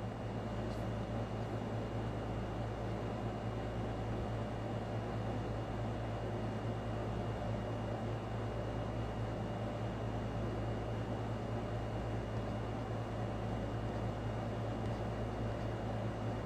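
A steady electronic hiss of interference from an old laptop while videos are being uploaded runs unbroken from start to finish, with a low constant hum beneath it. It is fairly quiet and even, with no voices or other sounds.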